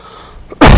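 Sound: cough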